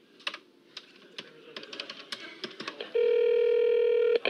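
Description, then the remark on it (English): A phone keypad is tapped in a quick, uneven series of clicks and beeps as someone dials Kramer to check the phone line, then a steady electronic tone sounds for over a second before cutting off. No one speaks. “Let me call Kramer and see if you can hear anything.”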